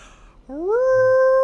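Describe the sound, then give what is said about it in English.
A person's voice imitates a howl: one long, rising wail that climbs and then holds a steady, loud tone, with no other talking around it. “That's a human howling? That's what it sounds like? Yeah. All right. I don't know. That's me howling.”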